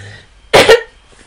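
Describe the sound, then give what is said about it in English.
A single loud throat clearing with two quick harsh bursts, like a dry cough, from a speaker who has had an occasional dry cough for about a month, standing alone against a quiet background. “it's really good for dry coughs. I don't know if you've been able to tell, but I've been like occasionally”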